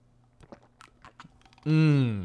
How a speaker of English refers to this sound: I have a cup right here. Here, can you hear it? Oh, yeah. I'm going to take a sip of that. I recommend this. It's got caffeine in it. It's purple. It tastes sweet, but there's no sugar. So let's take a sip.